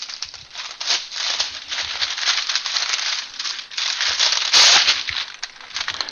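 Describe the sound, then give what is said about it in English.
A piece of parchment paper is pulled off to line a cookie sheet for baking cookies: it crinkles and rustles steadily for several seconds, with a sharper, louder tearing burst near the end before it settles into softer rustling as the sheet is laid down. “I'm just pulling off a piece of parchment paper.”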